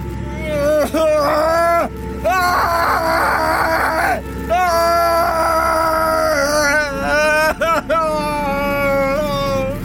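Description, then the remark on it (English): A man wails and cries out in pain, his voice loud, rising and falling in long strained moans with only brief gaps between them. “It grew sharper and louder with each passing moment, drowning out the man's wails of pain.”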